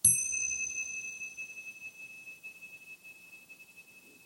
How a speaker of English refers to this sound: The sound of a bell is usually pleasant, unless it's too loud or not loud enough.